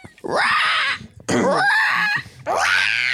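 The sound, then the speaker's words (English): Three loud, harsh vocal screeches, each a rising-then-falling shriek with rasp and grit, separated by short gaps — people imitating a raptor scream. “Of like, I can't even do like a raptor scream.”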